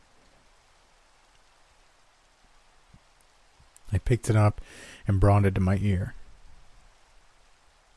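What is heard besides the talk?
steady rain falling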